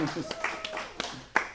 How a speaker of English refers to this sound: And, happy 4th of July, everyone. Can we just, let's all clap for 4th of July, right?